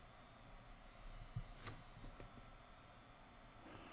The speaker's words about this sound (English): Are they set to take off now? Doesn't it sound like they started running the engines?